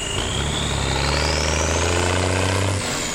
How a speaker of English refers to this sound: And so do the logging trucks. Every day, dozens of huge 18-wheelers haul load after load of raw logs and cut timber to the Atlantic port at Douala.